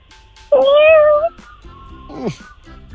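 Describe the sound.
A person imitates a cat's meow: one loud, drawn-out, wavering call lasting under a second, followed by quieter murmuring and a brief falling vocal sound near the end.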